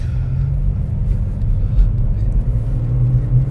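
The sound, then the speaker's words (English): A steady, loud low-frequency rumble of a pickup truck driving past with two black labs in the back, constant throughout with no clear pass-by swell. “There is a pickup truck with two black labs in the back of it right here.”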